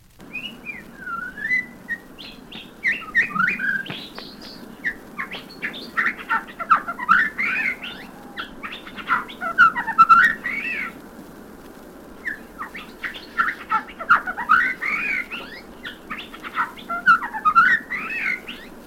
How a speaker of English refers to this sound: The Shama thrush hails from India. Shami is a soft, brown, and black feathered bird.